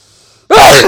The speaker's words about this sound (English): Oh, there we go. That's the first time I've actually gotten a successful sneeze on this podcast.